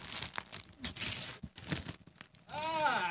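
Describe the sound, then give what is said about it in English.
Loud wrapping paper crinkles and crumples in bursts, with quick tearing rips, as a gift, a NutriBlend bullet blender, is unwrapped, ending in a sustained rustle as a voice briefly chimes in over it. “I'm gonna put this down to the wrap paper so everyone can feel really involved.”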